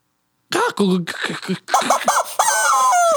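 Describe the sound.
A person vocally imitates a rooster crowing, a loud series of strained, warbling calls ending in a long, drawn-out high note.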